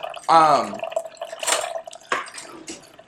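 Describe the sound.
A cup of coconut water is poured into a pitcher, a steady trickling stream with a few splashy bursts. It is moderately loud, with a brief voice-like sound near the start.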